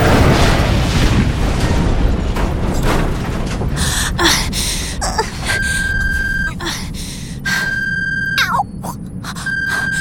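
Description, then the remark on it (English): A spaceship crash: a loud, roaring rumble with crunching bursts of impact, followed by a repeating steady electronic alarm tone sounding in on-off pulses over the fading rumble. “Alert. Impact in 3 seconds.”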